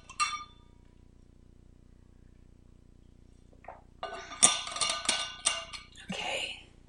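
A single bright, ringing glass clink, then a few seconds of near silence, followed by a busy run of clinks, knocks and handling noises as a glass of water is picked up and drunk from.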